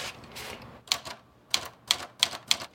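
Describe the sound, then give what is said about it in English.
Crisp, mechanical key strikes of a manual typewriter named Erica, fairly loud, as paper is rolled in and a standardized test is typed, landing in an uneven rhythm of about half a dozen clacks with brief pauses between them and no voices. “He adeptly rolls a piece of paper into Erica and conducts a standardized test.”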